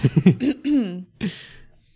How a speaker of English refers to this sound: I was just clearing my throat.